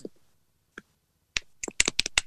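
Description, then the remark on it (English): Quiet keyboard typing as someone looks something up online, with a couple of isolated clicks followed by a quick, uneven burst of keystrokes, without any talking. “You can hear the typing.”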